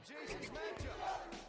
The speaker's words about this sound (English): ECW chant going. Yeah, there you go.